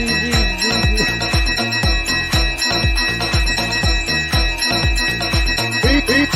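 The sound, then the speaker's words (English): A bell rings loudly and continuously, struck in rapid succession so the tones overlap into a bright, clanging peal with a shimmering sustained ring; no voices are heard. “Ring the bell.”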